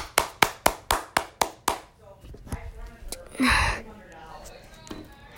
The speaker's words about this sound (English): Here is your round of applause.